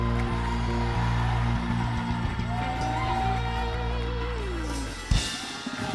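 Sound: audience cheering and shouting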